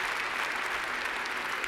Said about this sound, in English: Could you do something for me? Could you just offer a clap offering to God on behalf of just the effort that all of these folks on the stage just put in this weekend?